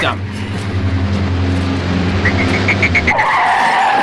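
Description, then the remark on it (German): A car engine rumbles low, then the car's tires begin to squeal in short pulsing bursts before breaking into a loud, sustained, high-pitched skid screech of an accident that runs to the end. “Das hört sich nach einem Unfall an.”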